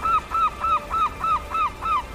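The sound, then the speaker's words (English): Seabirds on towering sea cliffs on the east side of Tory island call in a steady run of seven loud, honking cries, evenly spaced, with no voices and only a faint background hiss. “These towering cliffs to the east are a haven for seabirds.”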